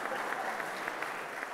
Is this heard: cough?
no